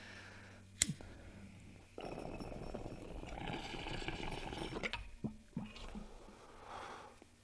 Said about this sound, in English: Really like how that bubbles and functions. They make some fucking weird noises.